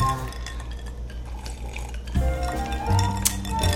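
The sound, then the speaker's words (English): Drinking glasses of a cocktail made with Brazilian rum, limes and sugar clink once in a bright toast near the end, after a stretch of soft liquid sloshing and light clattering of glassware. “So let's test it out. Okay. Ooh, cheers”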